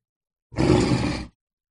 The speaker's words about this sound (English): And right about then, you hear a low, deep growl.